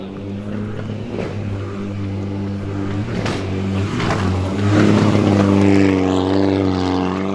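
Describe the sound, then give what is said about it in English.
A car engine roars with a deep, steady drone during Terry Grant's car stunt show, then revs harder and climbs in pitch toward the end, loud and continuous with no talking. “Terry, you've just jumped out of the cars.”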